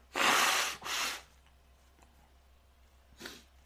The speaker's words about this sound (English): Let me blow my nose. Excuse me.